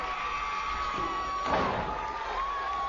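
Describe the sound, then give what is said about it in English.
A wrestling crowd at the Center Stage venue, which holds about 400 people, roars steadily during a Too Cold Scorpio and Brian Pillman match, with a sharp slam or thud, a shoulder tackle, around the middle that sets off a louder surge of cheering before the noise settles back to a constant din. “Hot crowd.”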